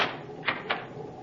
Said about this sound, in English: It's the Shadow, Margot. May I come in your cabin for a moment? Certainly. You may lock the door now. I'm inside.